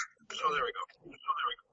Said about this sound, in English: Oh my gosh, echoes. Yes, yes, shut up. It's because I have two things in the same room.